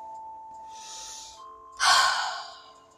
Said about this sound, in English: Just did a breathing exercise.